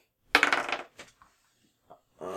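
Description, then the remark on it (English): Dice clatter across a table in a loud, rattling burst, followed by a few faint, scattered clicks as they settle, the roll coming up 17. A voice begins speaking right at the end. “I rolled a 17 plus my”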